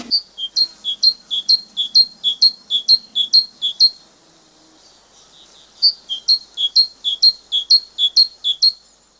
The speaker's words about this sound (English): Today's tweet is great tit, great tit. I've chosen this because it's one of the most common birds around and we hear them frequently, but it's also one of the most tricky.